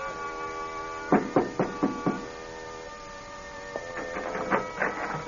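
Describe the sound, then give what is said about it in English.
Someone knocks on an apartment door on the third floor of an apartment house in two bursts of sharp, evenly spaced raps separated by a short pause, with a steady low electrical hum running underneath throughout. “He pauses, sets the suitcase down, and knocks on a door.”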